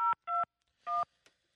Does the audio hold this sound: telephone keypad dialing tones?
yes